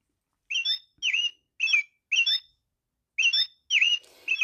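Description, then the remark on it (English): A voice imitates a bird's tweeting with a quick series of about seven bright, high chirps in an even rhythm, clear, with a brief pause midway and no talking. “Can you grunt like a pig in a sty, tweet like a bird in the sky?”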